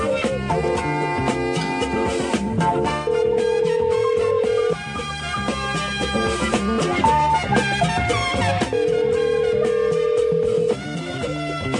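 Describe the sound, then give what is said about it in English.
A steady telephone dial tone sounds twice while a prank call is being placed, each tone lasting about two seconds, fairly loud over dense background music with no talking. “Dude, I have a phone trouble today.”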